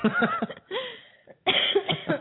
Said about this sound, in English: I kind of did okay with this coughing.